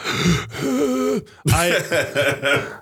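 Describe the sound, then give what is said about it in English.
Heavy, uneven breathing with strained, voiced groaning exhales: one long breath, a brief catch, then a series of shorter, wavering pants. No words are spoken. “I don't know why I'm breathing weird.”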